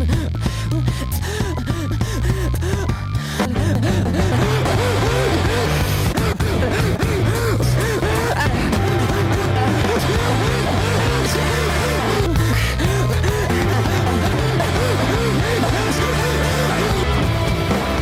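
Loud rock music with a sung vocal line, punctuated by sharp, audible breaths from the singer between phrases, recurring every few seconds throughout the dense, full-band mix.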